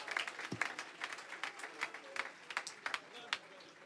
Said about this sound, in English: Holy Ghost is going to move tonight. Let's lift our voice and clap our hands to the Lord tonight.